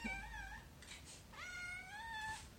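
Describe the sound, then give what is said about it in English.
Two drawn-out, high-pitched meows from two kittens about five months old, clear, separated by a brief pause with a short squeak between them; no one is talking. “I have two kittens. Their names are Haku and Howl. I will edit in sounds of them meowing for you.”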